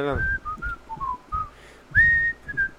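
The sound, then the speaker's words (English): A person whistles a short, bouncy tune of quick separate notes, fairly loud, with a brief sliding rise near the end and soft breathy sounds underneath. “I can't whistle right now for some reason.”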